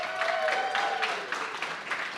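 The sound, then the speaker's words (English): A church audience breaks into steady applause and cheering for the kids helping with the morning service, a dense wash of clapping at a fairly loud level, with a faint whistle or voice rising briefly within the crowd. “So would you cheer for our kids as they're going to be helping me this morning?”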